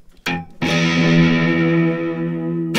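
An electric guitar played through effects pedals, including a Space Echo, with a short strum followed by a long, sustained distorted chord that rings out with rich harmonics before a final attack at the end; no talking.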